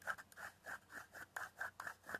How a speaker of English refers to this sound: So I'm rolling it in paper instead of a blunt. So you can get the full taste.